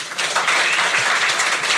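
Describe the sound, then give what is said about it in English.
A steady burst of audience applause, many hands clapping at once in a dense, even wash of sound that stays loud throughout, welcoming today's guest. “So please, together, for all those people listening at home, let's give a really warm round of applause for our new friend and guest today,”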